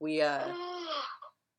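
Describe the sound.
A person yawns audibly: a drawn-out, voiced exhale that starts strong and slides downward in pitch for over a second before trailing off, close to the mic.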